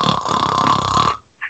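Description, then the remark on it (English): A single loud, rough, rattling snore lasting just over a second, followed by a short pause and a brief faint snort. No one speaks. “Snoring in the middle of a thing, where it's like, oh, so we have the Suicide Squad up next.”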